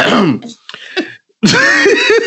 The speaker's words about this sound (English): I mean, let me clear my throat.